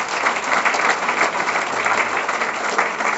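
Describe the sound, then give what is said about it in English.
A comedy show audience breaks into steady, sustained applause at the end of a comedian's set, many hands clapping at once in a dense, even crackle that holds at a fairly loud level throughout, with no voices rising above it. “Give me some applause, because I was hilarious.”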